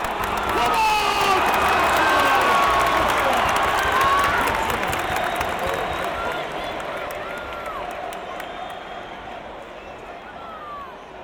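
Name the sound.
football crowd roaring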